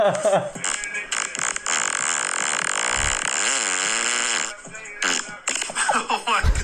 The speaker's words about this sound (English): Anyway, next fart.